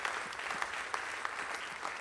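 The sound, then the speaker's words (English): An audience bursts into sustained applause, clapping in praise to God for people who just prayed. A dense, steady wash of many hands clapping together, with a few sharper claps standing out and no voices over it. “Can you give God a hand clap of praise in here for the people who just prayed that for the first time?”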